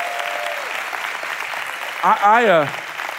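Steady applause from a church audience cheering for people working in education fills the whole stretch, with a loud rising-and-falling whoop of cheering bursting out toward the end before the clapping carries on.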